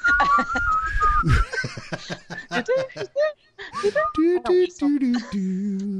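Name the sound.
person whistling a tune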